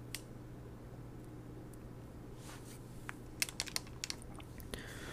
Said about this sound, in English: I don't know if you hear that clicking. It's my headsets.